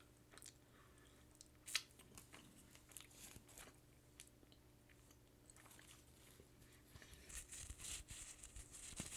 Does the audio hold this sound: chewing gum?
yes